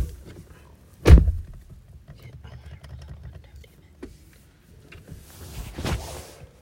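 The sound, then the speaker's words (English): A door slams shut once with a loud, heavy thunk, followed by a steady low rumble and quiet shuffling, with a brief rustling burst near the end. “Close the door all the way, bro.”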